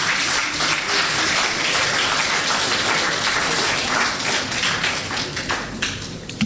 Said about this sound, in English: I think Bernard Avler deserves another round of applause.